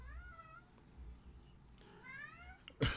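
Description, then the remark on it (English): A cat meows twice in drawn-out, wavering cries, the second rising and louder, followed by a brief sharp clatter at the end. “Kitty cat, I'm doing something right now.”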